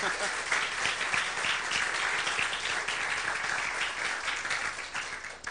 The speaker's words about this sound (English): Yeah, let's give him a round of applause.